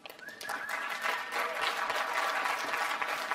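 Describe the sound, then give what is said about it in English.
Steady applause from a crowd for a teenager after her speech, heard in a played recording: a dense crackle of many hands clapping that swells in the first half-second and then holds at a constant level. No voices are heard over it. “Now, the world's favourite pouty teenager there, getting applause.”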